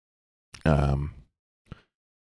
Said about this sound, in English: Simply going with the flow, and I can't stop yawning. Sorry, I didn't get in till late last night. I don't know why I keep yawning.